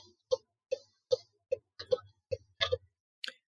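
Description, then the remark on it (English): A car's turn signal ticks steadily about twice a second as the driver makes a turn, each tick a crisp two-toned click with a low thump beneath it, evenly spaced and continuing alone without any voices. “Whatever was ticking in the background was sort of like a... It was meditative. Like time passing.”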